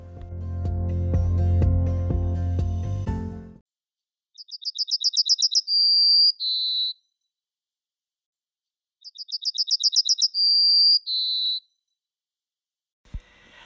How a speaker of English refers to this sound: And here's my haiku again, followed by a short burst of yellowhammer song.